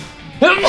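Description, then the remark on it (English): A single sudden sneeze bursts out after a moment of near silence, loud, with a sharp breathy onset and a short voiced tail. “Sneeze. Ugh.”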